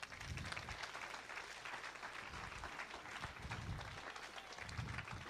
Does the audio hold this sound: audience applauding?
yes